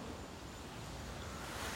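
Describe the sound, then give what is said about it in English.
Steady, strong wind blowing across a microphone on a balcony, a broad, even rushing roar with no breaks or gusts standing out, and no voices over it. “I'm sitting on the balcony right now. It's really windy.”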